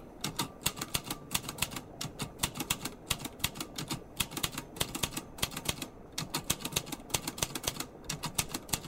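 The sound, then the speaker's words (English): Rapid, steady clacking of keyboard keys, dozens of crisp strikes in quick irregular bursts, fairly loud, with no voices present. “Ask it why it responds with all the key data, even though no one's typing.”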